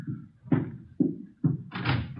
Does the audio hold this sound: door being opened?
yes